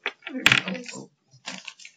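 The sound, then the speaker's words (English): Dice clatter and tumble across a hard tabletop in a quick rattling burst as players roll for perception in a game, then a second shorter roll follows after a brief pause; fairly clear. “you okay, everyone roll perception.”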